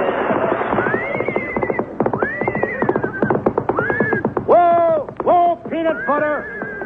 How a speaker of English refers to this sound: It's a horse, isn't it? Certainly it's a horse.